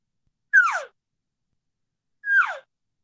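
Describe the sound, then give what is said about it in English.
Two short, nasal elk cow calls, deeper mature cow sounds made to a calf elk, each starting with a high mew and sliding downward in pitch, separated by a pause of over a second, with nothing else audible. “A little bit more deeper and mature cow.”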